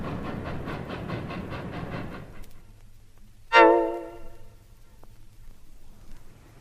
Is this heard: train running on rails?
yes